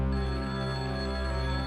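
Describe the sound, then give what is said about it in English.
A steady electronic telephone ring sounds loudly and continuously, a sustained tonal buzz with no talking over it. “And of course, when you call these guys, they both answer the phone, because of course they do.”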